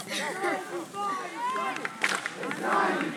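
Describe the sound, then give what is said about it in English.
A crowd cheers and shouts outdoors at a game as rain comes down harder, many overlapping voices rising and falling in a steady, lively roar that carries on for several seconds. “As the Baco crowd now, the rain's starting to come down harder as the game will take a delay.”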